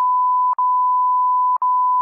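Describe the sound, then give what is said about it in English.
A steady, loud, high-pitched censor beep drones on without any voices, broken by two very short gaps that make it stutter briefly before it resumes. “Put some beeps in this one.”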